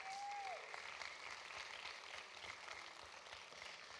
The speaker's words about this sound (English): Guys, give her a round of applause.